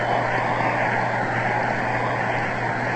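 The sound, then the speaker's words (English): Steady applause from a large crowd at a baseball game, for pitcher Carl Hubble, a dense, hissing wash of clapping that holds at an even loudness throughout, with a low constant hum running underneath and no voices. “That round of applause, of course, is for none other than the pride and joy of Manhattan, Carl Hubble.”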